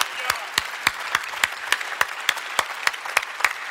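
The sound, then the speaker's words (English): A church audience, across all its campuses, applauds, with sharp claps landing in a steady, even rhythm over a dense wash of scattered clapping. No one speaks. “Would you just put your hands together? Not a little golf clap, all campuses.”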